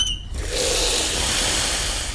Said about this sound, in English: But when you want it to go underwater, you need to push the air out of the tanks and fill them with water instead.